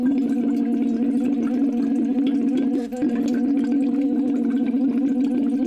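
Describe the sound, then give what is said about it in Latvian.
A voice hums a long, steady tone through a straw into water as a vocal warm-up exercise, the note buzzing with continuous bubbling, broken only by a brief breath near the middle before carrying on. “Pirmais noteikti vienkārši būtu teiksim, ielikt iekšā tātad salmiņu ūdenī un vienkārši garos toņus un sākt vienkārši ar...”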